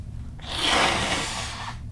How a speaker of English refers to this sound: Number one, I gotta keep blowing my nose. Hold up.